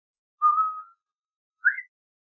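Two short whistled notes: a steady tone, a brief pause, then a quick higher rising note that stops suddenly, leaving silence. Moderately loud, heard alone with no talking.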